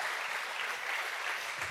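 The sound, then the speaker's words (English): A crowd claps steadily for AstraZeneca at an event, a dense wash of many hands applauding at once, fairly loud and sustained without voices rising above it. “A round of applause for AstraZeneca.”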